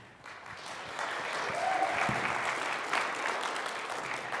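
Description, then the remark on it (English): Polite, light applause from a small church audience welcoming a guest preacher to the pulpit, a soft steady patter of scattered claps that swells after about a second and holds at a modest level without cheering. “Well, thank you for that golf clap.”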